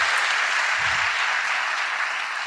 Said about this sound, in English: one more round of applause for being with us today. Thankful for you.